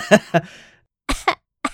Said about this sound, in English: I will edit out every cough.